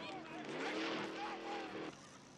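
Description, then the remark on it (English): In a film scene, a car engine roars, its pitch climbing as it rushes in and almost hits two actors, with a brief skid-like squeal before the noise drops away abruptly near the end; voices may murmur underneath. “Now, this car that almost comes in, that really was done with this two stars.”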